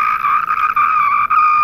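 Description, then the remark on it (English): Someone imitates a cicada with a loud, continuous, high-pitched buzzing drone that holds steady for under two seconds, dipping briefly a few times, with no other sounds. “I think that cicadas, don't cicadas just scream? They're just like.”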